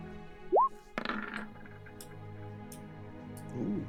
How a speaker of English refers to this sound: I'm going to just roll a hit dice really quick.